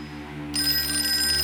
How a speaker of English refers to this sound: Let it go on ringing. It's a trick of some kind. I won't answer it. I won't, I won't, I won't, I won't. Even if it goes on ringing all night, oh, you ring. You go ahead and ring.